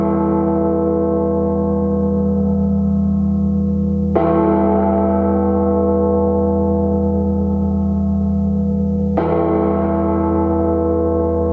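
A deep church bell tolls slowly, three heavy strikes about five seconds apart, each leaving a loud, rich hum that rings on until the next blow. No voices.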